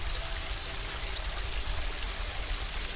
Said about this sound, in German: weiter weg siehst du einen Wasserfall, der an einem Felsen plätschert. Und weil es dir so viel Spaß macht, schwimmst du nun zum Wasserfall und du stellst dich darunter und genießt einfach diese erfrischende Dusche.